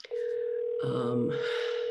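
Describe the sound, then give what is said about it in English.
A steady electronic ringback tone hums on a phone line for about two seconds as a call to a farmhouse after 11 p.m. keeps ringing, with a brief murmur of voices briefly layered over it partway through. “So I called, and it kept ringing and ringing and ringing.”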